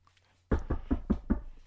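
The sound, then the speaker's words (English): Five quick knocks in an even, steady rhythm, fairly solid, coming right after a brief silence with no voices around them. “Knock, knock.”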